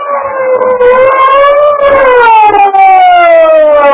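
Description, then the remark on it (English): A police car siren wails loudly as the car arrives and comes to a halt at a barricade around a club building, one continuous tone that swells slightly then slides gradually lower over a few seconds, with no voices. “The big police car came to a halt at the edge of a live barricade thrown around the Skylight Club building.”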